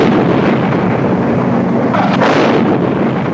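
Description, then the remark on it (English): A hospital explodes in a massive fireball, a loud, sustained rumble filling the whole clip, swelling briefly past the midpoint before rolling on as debris crashes into a nearby shop, with no voices. “The hospital explodes in a massive fireball, engulfing everything nearby and sending debris crashing into the nugget shop and knocking everyone over.”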